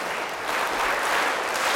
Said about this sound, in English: Oh, well, you can clap for him. By the way, you have to clap for both of them. Remember the clap. Remember.